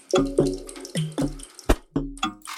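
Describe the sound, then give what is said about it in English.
Water runs and gurgles in a series of short, splashy bursts, like a tap flowing into a sink, close and moderately loud with no voices. “Emanti. Water. Agua.”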